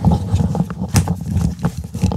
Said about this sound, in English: Hold on, we're if you hear that, we just experienced a small earthquake. It was crazy.